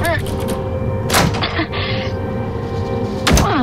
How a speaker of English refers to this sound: Door's stuck. Help me push it.